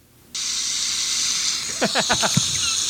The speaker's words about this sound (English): I like how she has the fucking faucet running because there's other people there.